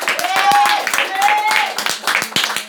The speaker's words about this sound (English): Awesome, round of applause for our winner.